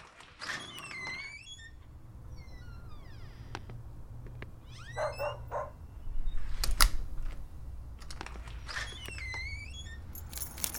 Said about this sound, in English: Forget something? Car keys.